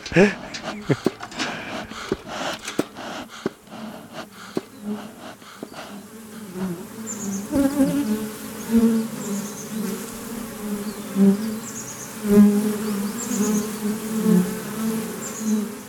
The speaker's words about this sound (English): I can hear how the bees are behaving, like if they're agitated, like there's, you know, other bees trying to get in the hive, or if it's too crowded, or they're too hot, or too cold. Or you can hear if they're just calm.